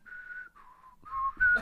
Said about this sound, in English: Not even whistle an old tune for us? I'm not even a good whistler.